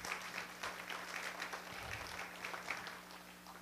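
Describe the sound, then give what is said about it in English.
An audience claps together in a steady, dense round of applause lasting a few seconds, with many hands blending into a continuous patter and no one speaking. “Does God answer prayers? I mean, clap.”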